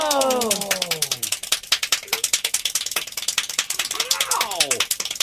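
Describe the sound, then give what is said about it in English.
Extremely fast hand clapping by the officially world's fastest clapper, a continuous rapid-fire stream of sharp claps almost like a ratchet, with excited vocal exclamations sliding in pitch at the start and again near the end. “He is now officially the world's fastest clapper.”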